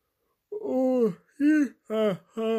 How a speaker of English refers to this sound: I actually think the yawn is not the standard podcast yawn. I think that was a legitimate yawn from the wild, a real wild yawn, organic, free-range yawn there from a genuinely tired boy.